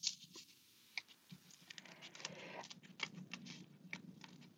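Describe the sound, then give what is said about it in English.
Quiet snipping and crisp clicking, a rapid irregular series of small blade snips like scissors cutting, with soft rustling underneath and no talking. “So I am looking at you, and sometimes you can hear the sound of the scissors if I'm really quiet.”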